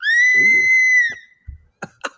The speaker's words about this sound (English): That scream is from Roller Coaster Tycoon 2.